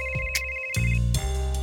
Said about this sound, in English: Last February, Chris was busy on his laptop when his phone rang.